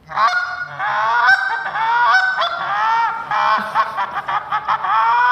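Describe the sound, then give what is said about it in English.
A goose call being blown to show how it differs from a duck call: a loud, nasal run of honks, drawn-out at first, then breaking into quicker, choppy clucks toward the end, with no talking over it. “demonstrate for us this morning the difference between a duck call and a goose call”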